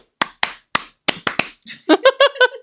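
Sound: hand clapping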